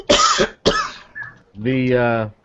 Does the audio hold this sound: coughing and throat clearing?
yes